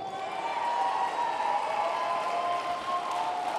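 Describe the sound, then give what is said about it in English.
An audience claps hands steadily for a few seconds, a dense, even wash of applause with some crowd noise and cheering mixed in, at a constant loudness throughout. “We are kingdom people. Clapping is the language of authority.”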